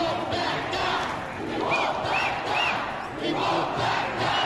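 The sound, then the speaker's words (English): A large crowd roars and cheers continuously, the dense wash of voices swelling and easing in waves, with a few brief high whistles cutting through midway. “Then they started cheering.”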